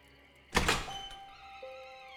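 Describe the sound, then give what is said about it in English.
A basement door shuts with one solid thunk, and the sound fades into a quiet backdrop of faint sustained tones. No one speaks. “He shut the door and paused for a moment, listening intently.”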